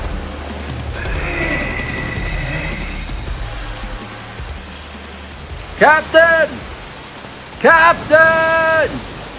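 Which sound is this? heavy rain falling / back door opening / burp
heavy rain falling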